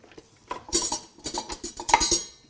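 Metal utensils clatter and jangle as someone rummages through a kitchen drawer, a dense run of bright, irregular clinks and scrapes lasting a couple of seconds, with no talking.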